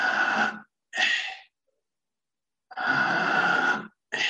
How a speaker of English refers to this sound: And so it's breathing in deeply, letting go, breathing in, letting go. And every minute it goes faster. So it begins slowly like this. Deeply in, letting go.